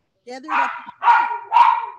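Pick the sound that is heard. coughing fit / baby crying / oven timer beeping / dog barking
dog barking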